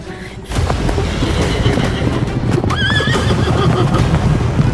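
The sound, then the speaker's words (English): Horses whinny loudly over a dense, rumbling clatter of galloping hooves that kicks in abruptly and keeps pounding, chaotic, with one shrill neigh rising above the din: three giant horses in a packed stable charging at full speed. “Suddenly, three giant horses to our right took off, charging directly towards us at full speed.”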